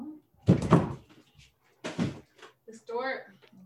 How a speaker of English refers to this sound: Is it a puppy or a little person? No, it's my dog. She's opening the door.